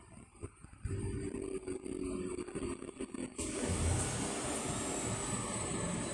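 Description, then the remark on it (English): Heavy engines rumble as tractor-trailer trucks roll in to where the cars go on a chilly evening in Midway, Florida, a steady low drone that swells louder midway, with a faint high whine riding above the broad road noise. “Yeah, these tractor trailers coming in here to where the cars go.”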